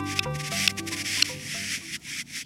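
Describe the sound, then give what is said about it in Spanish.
A male buff-breasted sandpiper courting a female on its breeding ground in the far north of the Arctic Circle gives courtship clicks: three sharp, dry ticks spaced about half a second apart over a steady, breathy rushing noise, with no voices. “Son los llamados de un correlimos canelo macho cortejando una hembra en su área de reproducción en el extremo norte del Círculo Ártico.”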